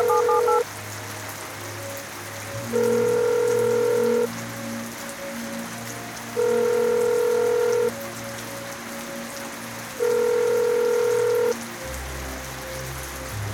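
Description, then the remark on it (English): Steady rain hisses throughout while a telephone ringback tone from a call placed on a payphone sounds in three long, evenly spaced pulses; nobody speaks. “I'm soaked, dripping. Water runs into my eyes.”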